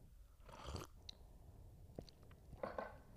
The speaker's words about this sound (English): Hold on, I need a sip of coffee.